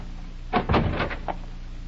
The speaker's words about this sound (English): Let's make it up to the door. Come on. If the door's unlocked, flash your light inside the minute I open it.